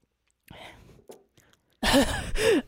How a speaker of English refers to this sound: Did you hear the hard breath that came out of her mouth?